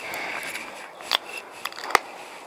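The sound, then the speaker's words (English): A can of Claudia, a 7% IPA, cracks open with a sharp click and a short hiss, followed by a steady fizzing of foam frothing up over the top, with a few small pops and crackles. “So, let's open this can, see what we get.”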